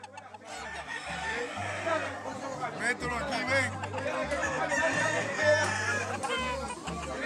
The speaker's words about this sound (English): Once the roosters and their owners arrive at the arena, they begin to look for a fight.